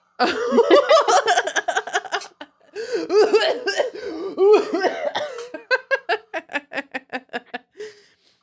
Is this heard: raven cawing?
no